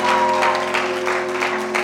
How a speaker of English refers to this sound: Why don't you clap for the Lord? A big clap offering to the Lord. Oh, I thought you were clapping for Jesus.